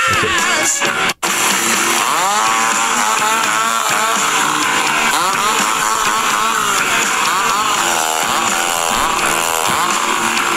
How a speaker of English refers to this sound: So he's playing the chainsaw underneath this.